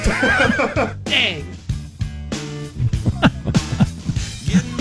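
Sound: donkey braying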